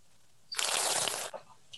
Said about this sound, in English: I do apologize for my slurping for podcast listeners. How exciting was that? Hearing my slurp down the microphone.